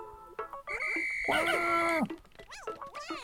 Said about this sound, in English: Now I'll use B to call them back to me with my whistle.